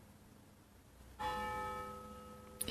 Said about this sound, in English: Oh yeah, there it is. There's the bell. Can you hear it? Can you hear it? It happens all the time.